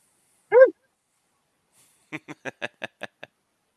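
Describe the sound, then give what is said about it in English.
A single short, clear bark from an orange dog rings out, followed after a pause by a quick run of seven short huffing bursts that fade toward the end, with no talking. “Give us a woof woof”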